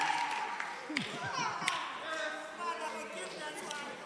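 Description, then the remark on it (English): Scattered hand claps ring out from a crowd clapping their hands for Jesus, over a lively mix of voices murmuring and calling out, with a few sharper claps standing out amid the chatter. “Clap your hands for Jesus.”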